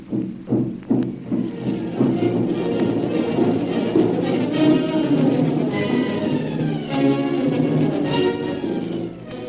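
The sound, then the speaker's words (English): Native war drums (tom-toms) beat in the jungle in a quick run of deep, heavy thumps at the start, then carry on under a dense, continuous wash of wavering, sliding tones, with no talking. “Tom-toms beating in the jungle.”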